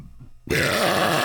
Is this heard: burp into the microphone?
yes